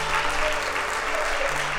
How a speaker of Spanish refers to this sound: Alguien déle un aplauso al Señor. Alguien déle un aplauso al Señor.